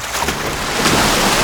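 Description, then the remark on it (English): Big drops of water splash down over a constant wash of rushing, watery noise, with a few sharper splats standing out, fairly loud. “Oh, those tears are like huge raindrops splashing in the air.”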